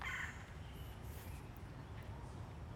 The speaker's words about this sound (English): Red-bellied woodpecker. Let's see if we can spot him.